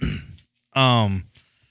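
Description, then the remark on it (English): A person gives a rough, breathy cough, then after a short pause clears their throat with a longer, voiced rasp, fairly loud, ending with a faint trailing breath. “Damn, dog was coughing, man.”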